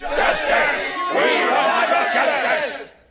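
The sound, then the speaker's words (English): A large army of men roars and growls angrily, with harsh shouts breaking through the massed voices. The din stays loud and steady for about three seconds, then fades quickly. “A growl of anger sounded, pierced by harsh shouts.”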